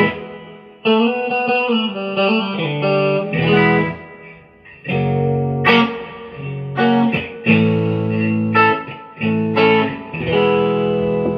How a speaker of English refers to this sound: But the reverb on this thing. Oh, man. Let's just give it a little hint of reverb. I'm going to bask in the reverb.